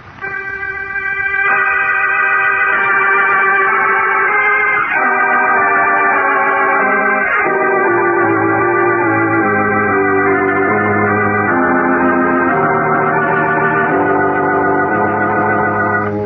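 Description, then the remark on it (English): A mantel clock chimes noon on Christmas Day, playing a slow melody of ringing, overlapping bell-like tones that sustain and blend together at a steady, fairly loud level, with no voices. “Sadly, Jimmy Olsen and Poco listened to the mantel clock chiming out noon of Christmas Day”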